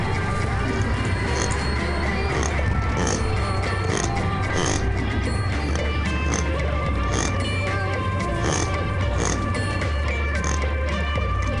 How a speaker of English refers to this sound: And here's a baby springbok.